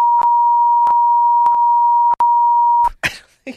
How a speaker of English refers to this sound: we should probably beep that